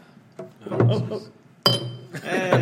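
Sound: glasses clinking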